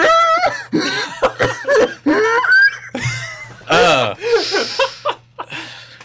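A person coughs through a mask: a series of raspy, wheezy, muffled coughs in quick bursts, broken up by breathy gasps and bits of laughter.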